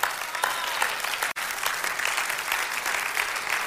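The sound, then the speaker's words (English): A crowd applauds steadily, many hands clapping in a dense, crackling wash of sound that holds at a fairly even level throughout, with one brief cut to silence partway through. “Listen, Listen, before you clap”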